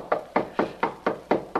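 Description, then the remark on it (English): Seven firm, evenly spaced knocks on Mr. Stone's wooden door at 2 in the morning, in quick succession and fairly loud, with no voices. “Stone took a sleeping pill, fell asleep, and is too drowsy to hear our knocking.”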